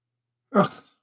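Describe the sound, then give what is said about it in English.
A single rough cough from a person who is sniffling and coughing bursts out of silence and trails off quickly, followed by the brief start of another sound right at the end. No one speaks. “I don't know that I could take this kind of weather all the time for a long time, because I'm sniffling, I'm coughing.”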